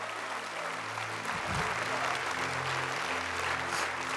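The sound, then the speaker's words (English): A church audience breaks into sustained applause after a salvation prayer, dense clapping from many hands filling the room evenly for several seconds, with a low hum underneath and scattered voices mixed in. “Give them a big hand clap right now.”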